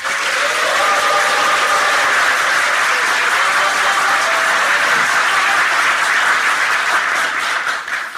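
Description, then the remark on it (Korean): An audience at a forum on the power industry and privatization applauds to welcome Democratic Party of Korea leader Lee Jae-myung: a dense wash of many hands clapping at constant loudness for about eight seconds, with a few faint tonal murmurs underneath before it tapers at the end. “더불어민주당 이재명 당대표님을 먼저 큰 환영의 박수로 모시겠습니다.”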